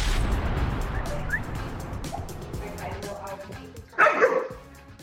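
A dog lets out a short burst of barking near the end, fairly close and clear, over a steady low rumble of background noise.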